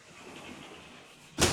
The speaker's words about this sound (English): I'm going to close the door here because Chinch is telling me that you can hear the yard work. So let me just close this real quick. Make it a little less noisy.